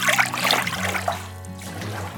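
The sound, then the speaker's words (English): Water sloshes and splashes as a woman's feet are lowered into a basin of hot water for a hydrotherapy treatment, with a few bright drips early on and a softer trickling swirl settling afterward. “Then she put her feet in the basin of hot water.”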